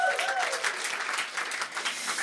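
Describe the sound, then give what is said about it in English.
An audience claps steadily for a woman who has just played for the speaker, a dense, even wash of many hands with no breaks, while a brief high tone fades out at the very start. “Let's give her a clap.”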